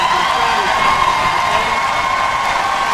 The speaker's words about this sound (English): What I'd like you to do is give a great big round of applause.